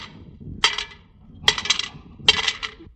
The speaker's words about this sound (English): But, Miss Brooks, I only asked for 30 cents. You put 40 in the kitty.